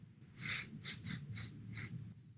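A person sniffs their own armpit: a rapid series of about five short, sharp sniffs, fairly loud, with a low background hum and no talking.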